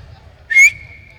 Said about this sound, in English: That's a hell of a whistle you've got. You got referee blood in you, don't you? I can only do it once.